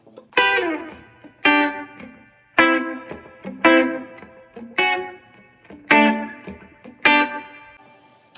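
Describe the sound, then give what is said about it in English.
Seven crisp electric guitar rhythm chinks in a pop country style, struck at a steady, evenly spaced rhythm, each one ringing briefly with an echoing tail before the next. Fairly loud, no voices. “You get the kind of pop country kind of thing, you know, where there were strings and they were really trying to push country more pop, and you have more of the use of rhythm chinks, where you have”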